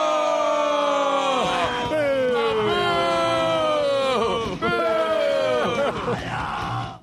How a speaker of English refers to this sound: This is rare that I love any song yelling because it's too much noise, but that I love it.